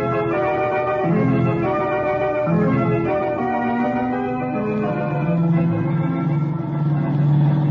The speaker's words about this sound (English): Tasso and Hopper are certainly giving their car all it can take.